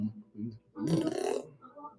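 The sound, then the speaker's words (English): A single loud, rough burp lasts about half a second, preceded by low mumbling vocal sounds and followed by a softer, brief voiced tail. “Is that a burp?”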